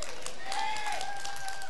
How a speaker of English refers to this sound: Yeah, you're clapping for me.